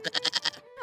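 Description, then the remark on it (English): A single goat, called William, bleats in a quick, wavering burst of about five pulses, fairly loud, then trails off into a short rising tail. “His 80-year-old neighbour definitely needs a piece of cake, even if she can't fight in battles and only has one sad goat called William.”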